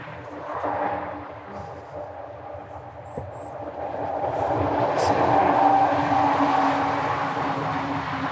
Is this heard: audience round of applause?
no